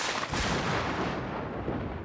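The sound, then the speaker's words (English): Two loud, deep booms like thunder, heard by a shepherd tending a flock of 300 goats, rolling into one another with a heavy, sustained rumble and no voices. “said he stepped away a bit to talk on his cell phone when he heard two very large booms, which sounded like thunder.”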